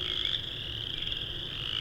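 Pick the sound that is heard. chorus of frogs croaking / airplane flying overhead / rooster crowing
chorus of frogs croaking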